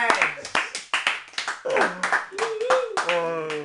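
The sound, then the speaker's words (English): A small group clapping in a loose, uneven rhythm of sharp hand claps, mixed with whooping and cheering voices that rise and fall in pitch over the applause. “Round of applause.”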